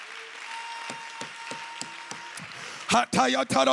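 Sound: audience clapping and applause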